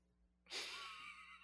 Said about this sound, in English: Gasp. Yeah. Clutch your pearls.